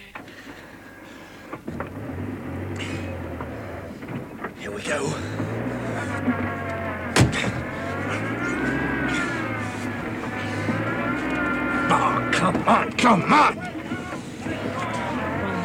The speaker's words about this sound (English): The engine's cold. Come on, you brute.